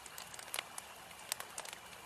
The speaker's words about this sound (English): You know, sometimes about a campfire, all you need is to just sit down and listen to the campfire, right? Yeah. That's why I think to end this episode, just 30 seconds of campfire crackling silence.